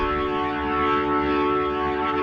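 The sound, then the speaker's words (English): A sustained, buzzy synth-like sample with rich harmonics plays alone, its modulation pushed up so its pitch and texture waver in a slow, wobbly modulation that gives it a siren-like warble throughout. “Sample starts, and then I'm pushing up the modulation to give it more of a wobbly, wibbly wobbly at the end.”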